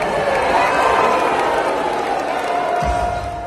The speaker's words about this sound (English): even when he said, God bless Texas, they were still booing at John Cornyn